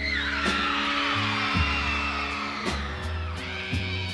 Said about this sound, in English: That audience is just screaming their lungs out because this guy knows how to deliver a show.